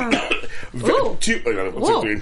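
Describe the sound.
A close, fairly loud run of throat clearing and raspy coughs, several voiced, gravelly bursts in quick succession with strained, rising and falling vocal tones between them.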